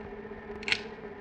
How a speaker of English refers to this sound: The sound of the steady, regular clicking of the light in operation is what Roland Barthes might call a rustle, the sound of the good functioning of a machine.